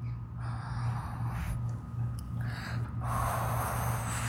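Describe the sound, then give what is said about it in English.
A child blows out a long, breathy whoosh to imitate wind, a steady hissing rush lasting several seconds that swells louder near the end, with no talking. “Is that wind or an animal breathing hard or what? That's wind.”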